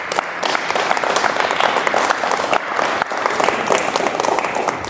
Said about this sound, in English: Come on and clap those hands.